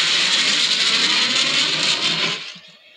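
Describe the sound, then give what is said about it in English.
Someone vocally imitates a jet afterburner: a loud, steady, breathy roar of hissing noise that holds for over two seconds, then abruptly drops away into quiet. “It sounded more like afterburner sound effect. That's what it was. It was a jet.”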